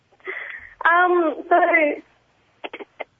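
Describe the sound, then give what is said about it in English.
A garbled, faulty telephone line connection on a caller's phone during a radio call-in: a thin, band-limited voice warbles and breaks up into distorted tones, followed by a few short clipped bursts before dropping out. “We're having such trouble with that phone, we might have to leave it there and try and track back to”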